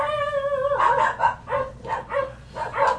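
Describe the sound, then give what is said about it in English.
Small dogs barking at a gate yap in a rapid, overlapping chorus of high-pitched barks, starting with a drawn-out whine before the sharp yips come in quick bursts. No one speaks. “Packs of vicious small wolves. Small, tiny, tiny, tiny, tiny, angry wolves.”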